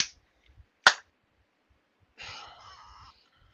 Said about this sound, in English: Wait, can you hear me clap?